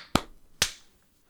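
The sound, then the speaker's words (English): Two sharp, crisp hand claps about half a second apart, made to sync audio for a recording, each a quick bright smack with a short tail, standing alone with no talking around them. “We will clap sync in 3, 2, 1.”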